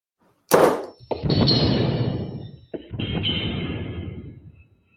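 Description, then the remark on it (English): A small, sharp explosive pop bursts out near the start as a little diesel fuel, a low octane fuel, ignites under compression, followed by two longer hissing, rumbling mechanical whooshes with a faint high whine. No one speaks. “There you go. You get a little explosion in there.”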